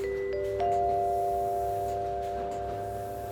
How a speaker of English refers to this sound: As the 3 hour marker hits, you hear a chime.